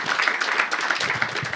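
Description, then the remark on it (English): A crowd applauds steadily, with many overlapping hand claps merging into a dense, bright wash of sound that holds an even loudness throughout, with no clear talking. “Clap again.”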